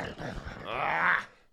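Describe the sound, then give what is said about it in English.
A person imitates Uncle Vernon's angry growl on hearing the word wizard: a single rough, guttural snarl from the throat that swells louder over about a second, then breaks off abruptly. Fairly loud, with no other talking. “Uncle Vernon growls when he hears the word wizard.”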